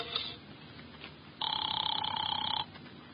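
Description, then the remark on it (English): A single loud burst of an old-fashioned telephone bell ringing, lasting just over a second against a faint background hiss, with no one speaking. “Here's where the phone is.”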